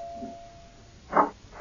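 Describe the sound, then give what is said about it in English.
A doorbell rings with a thin, steady tone that hangs for a moment, followed by a louder buzzing ring and the start of another, with no talking. “I'm coming. Wear out the bell.”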